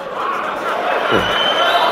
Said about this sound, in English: Elon Musk introduces breakthrough all-electric long-haul semi-truck. And the crowd goes wild.